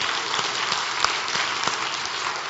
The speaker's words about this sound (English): And deacons do that behind the scenes. They don't ask for a lot of attention, and they're not often given gratitude for that. So I want to give them a round of applause if we can, because they're amazing people.